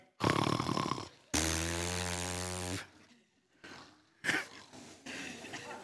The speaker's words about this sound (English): and during sermons, help us not to snore, or your power and glory last forevermore.